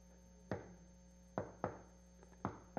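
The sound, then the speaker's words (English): Dull thumping knocks come in loose pairs, like a heartbeat's double beat, repeating about once a second over a low, steady hum, with no talking. “I hear his heartbeat. And I'm like, God is so good that he sustains that heartbeat. And it's almost like a knocking.”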